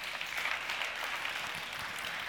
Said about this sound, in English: No, I like how many people clapped versus how many did not.